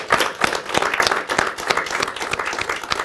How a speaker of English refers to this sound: Can we have a round of applause for you?